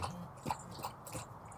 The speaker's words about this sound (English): Thank you, Darwin. Darwin's having a drink. Oh, drinking the water. Yep.